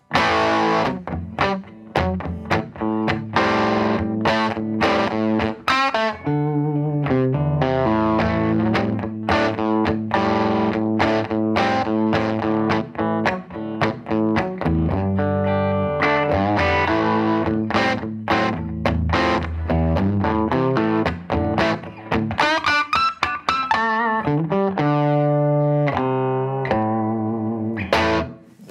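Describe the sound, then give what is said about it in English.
A bright, driven electric guitar on the bridge pickup plays a steady stream of sharply picked notes and chords with a crisp, biting chirp on top, loud for the whole stretch, with no voices. “It's always interesting to hear the chirp on top.”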